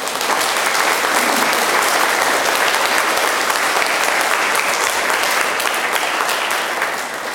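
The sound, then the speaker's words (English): A church audience applauds the children who led the Mass, a dense, even wash of many hands clapping at once that stays loud throughout, with no voices standing out. “Why don't we clap for them?”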